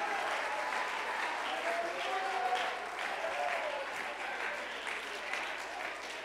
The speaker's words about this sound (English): Somebody clap your hands and lift up a shout in the name of Jesus.